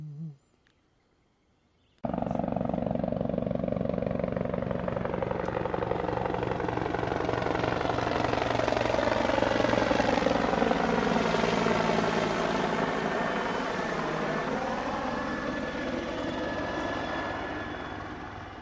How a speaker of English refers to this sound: It's the orange helicopter. That's the one that's used for emergencies. You know, if there's an accident in some remote area or whatever, they have to get somebody very fast to a hospital. Anyway, it's doing circles